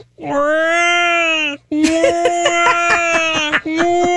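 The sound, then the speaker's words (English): A person imitates the wailing, crying-baby sound a pet cat makes when getting ready to throw up: one long drawn-out yowl, then a second wavering, pulsing wail that breaks into rapid throbs before a short final rise. “Our cat makes, when it's getting ready to upchuck, it makes a sound like a crying baby.”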